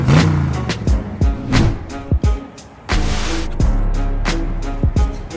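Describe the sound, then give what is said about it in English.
A Mustang Mach-E electric car drives by with a steady low rumble, broken by a series of sharp, irregular thumps and brief dips in the noise. No one speaks. “Okay, I'm gonna do this now. Starting with the Mustang Mach-E.”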